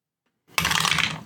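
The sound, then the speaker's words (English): Dice for a listen roll in a game clatter and rattle across a hard surface in a sudden burst of bright, busy clicks that tumble on steadily, then begin to settle. No one speaks. “Give me a listen roll.”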